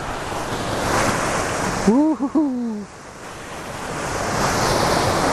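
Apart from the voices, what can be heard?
roaring waterfall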